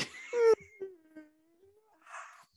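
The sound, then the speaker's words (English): A loud, tired yawn at around 2 a.m. opens with a burst of breath, then a long voiced groan that slides slowly downward in pitch, ending in a soft breathy exhale. “You yawned so loud that your audio cut out.”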